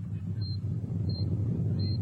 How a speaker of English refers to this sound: Another quake. Sounds like it. Hold on.